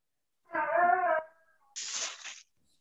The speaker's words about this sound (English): Someone's parrot.